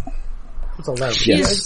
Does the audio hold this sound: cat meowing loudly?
yes